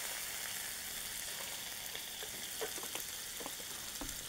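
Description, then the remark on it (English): Water put onto a hot panini press hisses and sizzles steadily, a broad crackling hiss with scattered sharper pops and spits throughout, fairly quiet and without any voices. “So I'm gonna put some water on it.”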